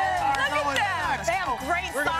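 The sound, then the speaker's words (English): An excited crowd on a beach fills the scene with overlapping voices, excited chatter and rising shouts blending into a steady, loud hubbub. “You can hear the crowd on the beach.”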